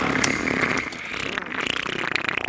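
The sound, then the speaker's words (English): A train rolls along the tracks with a steady, loud rumbling roar, a high metallic squeal running over it and a faint rhythmic clatter toward the end. No one speaks. “Anyway, so that train track sound, what you heard there, was clearly it's something we don't want to have happen, but it does.”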